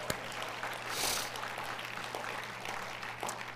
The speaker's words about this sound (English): 2013 to 2025, Generation Alpha. Let's clap for Alpha, everybody.